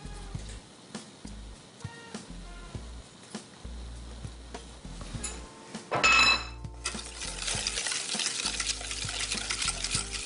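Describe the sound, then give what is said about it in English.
Egg yolks and sugar being stirred in a bowl: a utensil clinks and scrapes against the bowl in a quick, steady rhythm, then a louder scraping burst gives way to a continuous gritty rustle. No talking. “Give that a nice little mix. And then we're just gonna add the sugar right to that.”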